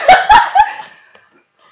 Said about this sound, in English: Are you okay? I just choked on my cough.